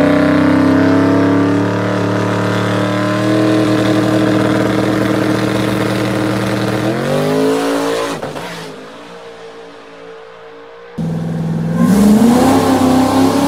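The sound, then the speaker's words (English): A loud, turbocharged race car engine, an FFRE motor with dry sump and a different turbo system, revs hard and holds a high roar, drops into a brief quieter lull, then snarls back up to full revs. No one speaks. “So again, now we come to how the car currently sits. Dry sump, the whole nine yards, Billy Badass, everything, FFRE motor, different turbo system,”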